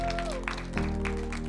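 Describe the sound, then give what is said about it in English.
An audience breaks into steady applause, a dense wash of many hands clapping at once, moderately loud, with a faint low hum running underneath. “Clap for you. Clap for them. Clap for them.”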